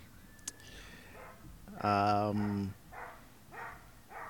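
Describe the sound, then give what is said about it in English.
A dog lets out one loud, drawn-out bark, followed by a few quieter yips, with soft background murmur around it. “That dog is telling you.”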